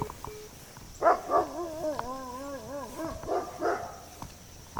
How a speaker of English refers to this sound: Dogs.